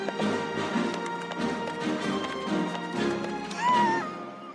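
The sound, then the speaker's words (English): A man rides a donkey, its hooves clip-clopping at a steady pace over a busy musical background, with a rising tonal cry near the end. “A man on a donkey!”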